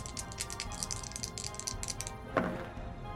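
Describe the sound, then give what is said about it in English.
A pair of ten-sided dice rattle rapidly together for about two seconds, then land with a single sharp clack, showing a seven and a three. The sound is moderately quiet, with no talking. “So I'm going to roll 2d10, and I'm going to compare it against my seven progress.”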